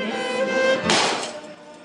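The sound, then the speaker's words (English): A hammer strikes a light bulb wrapped in a napkin, a single muffled crunch of breaking glass with a brief rustly scatter after it, preceded by a faint steady whine. “Breaking a light bulb in a napkin for safety.”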